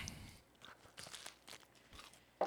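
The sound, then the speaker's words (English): A crunchy bite into a Rice Krispie treat, followed by a quiet run of crisp, crackling chews with irregular rhythm and a sharper snap near the end; no talking. “And that Rice Krispie treat is legit.”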